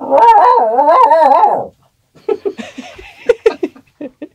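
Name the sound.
dog howling and whining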